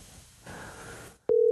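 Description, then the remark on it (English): An outgoing phone call ringing unanswered on the line: after a moment of soft hiss and rustle, a loud, steady electronic ring tone starts abruptly and holds, with no one speaking. “Oh, he's not gonna answer.”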